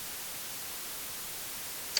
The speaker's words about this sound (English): I still see static. She was static. She's the static. When you don't have a strong signal on the TV, that's her.